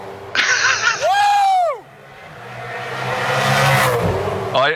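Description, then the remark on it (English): Race cars scream past at high speed. One engine's whine arcs up and drops sharply as it flies by, then a rising roar swells as more cars rush past, loud. “I don't actually like cars like going round and round, but I swear to God, trying to do that with those cars going past is not an easy task.”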